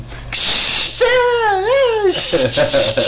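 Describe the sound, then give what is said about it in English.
A voice imitates indoor pool noise, starting with a loud breathy hiss like splashing, then a wavering, muffled hum that rises and falls as if underwater, then a return to hissy splashing. “You know that indoor pool noise? Like when you dip up and down underneath the water and back up?”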